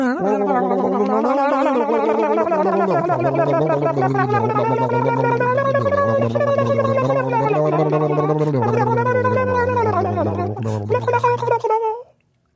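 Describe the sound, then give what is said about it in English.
Several voices gargle water together as a water choir while holding sung notes, producing a loud, bubbly, wavering drone that shifts pitch for about twelve seconds before stopping abruptly. “Let's do an above air water choir to take us out.”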